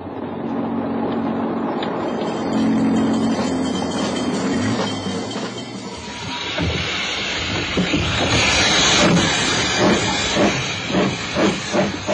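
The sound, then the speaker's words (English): A steam train pulls in at a station, loud hissing steam giving way to a rhythmic clatter of wheels over rail joints that thumps along, with no voices. “Passengers on that train, I see.”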